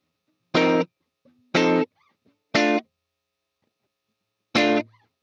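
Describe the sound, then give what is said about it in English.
Doubled electric guitar plays four short, loud, bright chord stabs, three evenly spaced, then a gap before the last, with no voices. “First, you got to double it up. Add a second guitar.”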